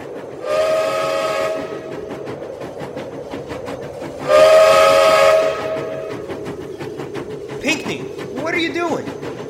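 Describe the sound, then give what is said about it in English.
A steam train's whistle sounds two long, loud, rich blasts separated by a short pause on a cold, snowy winter night in 1892 near the town of Kashmir, east of Leavenworth, over a steady rumbling background, followed by brief voices near the end. “blowing that whistle for?”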